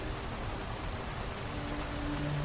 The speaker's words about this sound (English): It started to rain outside.